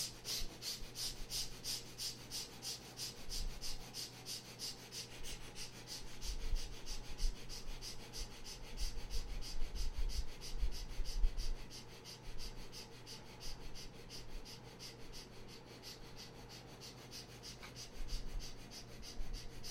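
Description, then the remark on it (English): Rapid, shallow, gentle breaths drawn through both nostrils in a steady quick rhythm during a guided breathing exercise, soft, repeating continuously with no talking. “So looking inside the ribcage, in the space, a spark of calmness, and start breathing quick, short, and gentle breath from both the nostrils.”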